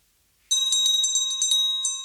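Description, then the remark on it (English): After a brief silence, a handbell rings out loud, shaken in a quick, steady rhythm of bright metallic strikes over a sustained shimmering tone, with no voices. “I think that was called Handbell Hitch Ring One.”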